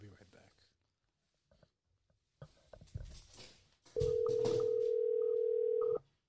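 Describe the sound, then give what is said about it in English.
A steady phone ringing tone hums loudly for about two seconds, following a stretch of muffled handling noise and indistinct voices in the background. “No va a contestar, watch.”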